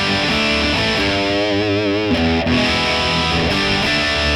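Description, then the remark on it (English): Distorted electric guitar played through an amp's vintage channel, a fizzy, bright tone with a sustained bent note wavering in vibrato mid-phrase among shorter riffing notes, fairly loud and steady throughout. “Probably like the vintage channel the best. Sure, yeah. It's a bit fizzy, that channel.”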